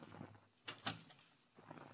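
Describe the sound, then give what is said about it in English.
A door at the top of steps in a city building at 11th Avenue and 46th opens with two quick clattering knocks close together, followed by a quiet room with faint low rumble and no voices. “Climb the steps and stop at a door.”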